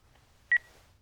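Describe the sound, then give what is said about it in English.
A single short electronic beep from an answering machine, a bright two-toned chirp that stands out sharply against an otherwise quiet background with a faint low hum. “The answering machine's going crazy.”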